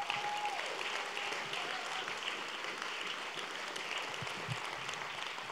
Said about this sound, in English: Can we give a round of applause as they come out?